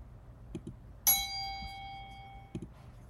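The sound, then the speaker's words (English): A single bright bell ding strikes once and rings out with a clear, shimmering tone that fades over about a second, with faint clicks before and after against a quiet background. “I have to find the bell.”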